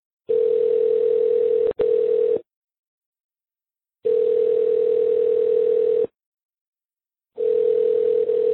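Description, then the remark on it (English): A telephone tone sounds while a call is placed to a local Walmart store: a steady mid-pitched hum in three long bursts of about two seconds, separated by pauses. There is a faint click in the first burst and no talking. “Let's just call the local Walmart, and then they don't have horse meat, but let's see if they'd be willing to order us some.”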